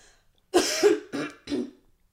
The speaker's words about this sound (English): Would you consider that cough dry or moist? Oh, it was a fucking moist one.